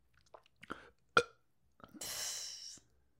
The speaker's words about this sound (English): You can burp on command, but when I burp, it's louder.